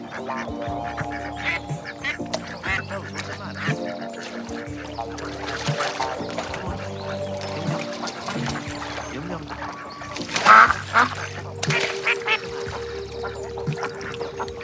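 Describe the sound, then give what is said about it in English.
Two wild ducks that landed in a pool quack in short nasal calls over a steady backdrop of sustained tones, with a louder, busier flurry of calls toward the end. “A couple months before all this, these two wild ducks landed in my pool.”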